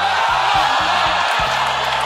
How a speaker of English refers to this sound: So if the story that we're telling takes place at a baseball game, we want to find a sound that'll put you at a baseball game. So maybe we take, you know, the sound of the ball hitting the bat and then a crowd clapping.